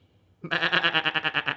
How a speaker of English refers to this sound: Yes, a sheep.